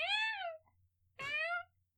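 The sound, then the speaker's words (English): A person imitates a cat with two drawn-out meows, the first sliding downward, the second starting with a raspy burst, with a short pause between them. “And I'm your alley cat”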